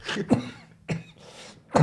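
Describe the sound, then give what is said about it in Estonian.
A person coughs three times in close succession, sharp and fairly loud, each cough followed by a short breathy rasp, with no talking. “Kas te kuuleksite köhimist praegu vä?”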